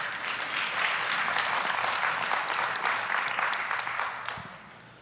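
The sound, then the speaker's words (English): An audience claps steadily for several seconds, a dense crackle of many hands at even loudness, then the applause fades out toward the end. “You can clap for that.”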